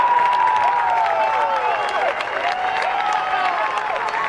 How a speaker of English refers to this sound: You get Olay chants in the background, but you could tell that people weren't cheering for Angel. They didn't really want him to win.